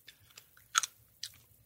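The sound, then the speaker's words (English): Someone chewing a hard cough drop, with sharp crunchy bites at irregular moments, one strong double crunch in the middle, plus softer clicks and a low steady hum underneath. “It's a cough drop.”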